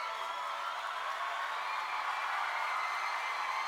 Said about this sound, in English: The other thing that's there on the multi-tracks is this bed of crowd noise that runs underneath almost half of the song. I don't hear much of this in the final mix either.